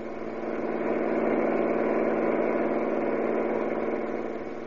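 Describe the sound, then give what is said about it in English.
A car engine hums steadily throughout, a continuous rumble with a faint rise and fall in loudness, as the car cruises along toward a gas station. No voices are heard. “When we drive into this gas station here, keep real quiet.”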